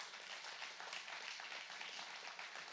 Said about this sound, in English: Is there anybody? Hallelujah. Come on, give him a hand clap of praise for that.